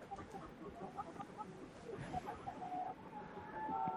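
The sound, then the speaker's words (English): A dense chorus of chickens clucking continuously over a steady noisy background, with scattered short calls and a few higher, drawn-out notes toward the end. “Sounds like chickens clucking.”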